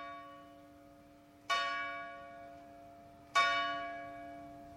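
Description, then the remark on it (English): A large bell at Queen's College in Cambridge tolls twice at a slow, steady pace, each strike ringing out with a rich metallic hum that lingers and fades before the next, heard in the college grounds with no talking. “We met in the grounds of Queen's College in Cambridge, just as the bell was tolling.”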